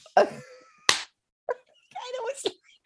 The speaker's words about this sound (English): Oh no. I slapped my leg so hard that there's a handprint on it.